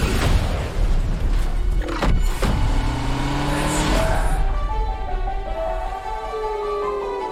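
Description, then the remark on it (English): A car engine roars and revs loudly through the whole stretch, with gear-shift pitch sweeps and a sudden heavy thump midway, as the car is driven hard at speed while chased by two helicopters. “Two helicopters versus a car.”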